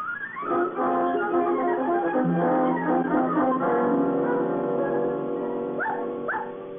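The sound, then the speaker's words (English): A dog, JoJo, whines and whimpers almost continuously, breaking into a couple of short, rising yelps toward the end. “He's in a dog hotel on a honeymoon with my dog.”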